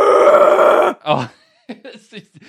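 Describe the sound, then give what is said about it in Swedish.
A voice imitates a battle scream: one loud, harsh, sustained roar lasting about a second, followed by a few short, quieter vocal bursts. “Och så skrek man så här.”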